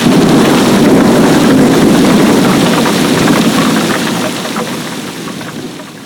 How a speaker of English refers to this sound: Big storms have been coming.